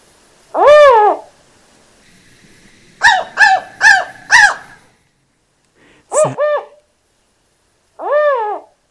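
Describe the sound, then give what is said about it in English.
California spotted owl calls: a long hoot, then a quick series of four rising hoots, a sharp two-part call, and a final hoot, loud with silent gaps between them. “Well, it just so happens we have California spotted owl sounds ready to go.”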